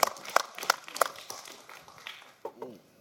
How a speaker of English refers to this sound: You're clapping. Let's get the YouTube people. The YouTube people are clapping better.